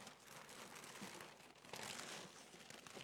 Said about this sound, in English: I'll throw that paper right in there.